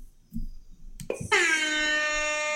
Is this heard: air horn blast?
yes